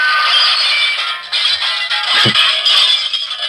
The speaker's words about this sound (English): I don't, you know, not enough of that sounded like breaking glass in the beginning. It kind of sounded like a comet.